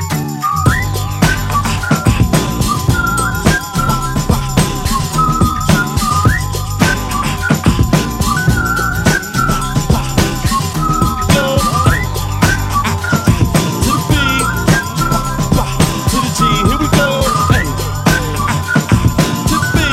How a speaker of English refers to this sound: As I walk down the street, whistling this